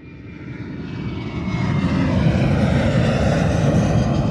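A low, rumbling airplane engine roar of a big plane coming into Hong Kong Airport swells steadily louder over a few seconds, then holds as a broad, heavy drone, used as a segment jingle. No voices.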